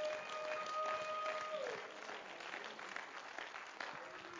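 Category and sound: crowd, audience clapping hands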